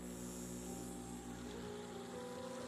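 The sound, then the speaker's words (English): A steady, continuous bubbling of water with a low mechanical hum underneath from an ozonator running in a bowl of water, fairly quiet, with no voices. “It's the sound of the bubbles.”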